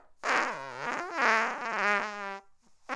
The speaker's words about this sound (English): If I can turn to you now, comedy fart machine.